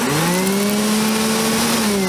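A vacuum cleaner runs steadily and loudly, a droning motor hum with a slight rising pitch over a rushing airy noise, continuous for a couple of seconds with no voices.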